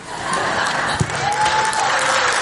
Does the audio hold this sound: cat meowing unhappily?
no